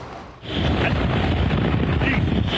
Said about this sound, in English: Ian's hurricane-force winds and record storm surge is dangerous